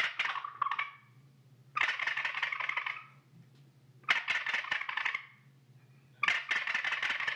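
The cheaper of two gobble calls is played, sounding a turkey gobble in four loud, raspy, rattling bursts, each about a second or two long, separated by short pauses over a faint low hum. No one speaks.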